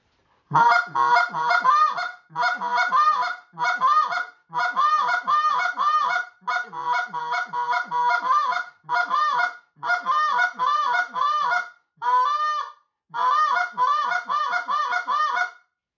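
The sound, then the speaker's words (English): A goose call blown in quick, rhythmic bursts of honking clucks, each cluck turned with a drawn-out moaning note, repeated steadily and loudly with short pauses between sequences. “So I'm going to take that cluck and I'm going to turn it with a moan, and this is what it's going to sound like.”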